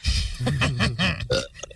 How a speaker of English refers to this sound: As he burps and wipes his thigh.